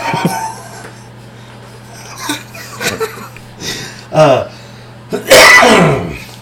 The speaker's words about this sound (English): I coughed right into the mic on that one.